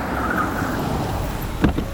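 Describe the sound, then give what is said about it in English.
A limousine's engine rumbles steadily as it pulls up, with a brief louder thump or door-like sound near the end. “Oh, wait, here comes someone in a long, fancy car. Oh, wow, it's a limousine.”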